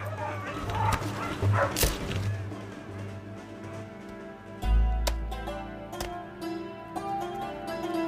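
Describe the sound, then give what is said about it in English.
Dogs bark in sharp, irregular bursts amid whimpering and yelping, loud, over a low rumbling background with a few scattered clatters. “Contemporaries calculated that 40,000 dogs were destroyed, and twice as many cats.”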